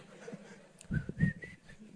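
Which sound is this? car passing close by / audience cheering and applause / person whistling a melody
person whistling a melody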